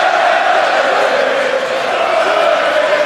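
A large crowd at a fight event in Dublin roars in a dense, sustained wash of cheering and shouting that stays loud and steady throughout, with no single voice standing out.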